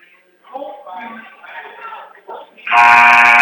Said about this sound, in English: And now the buzzers have sounded.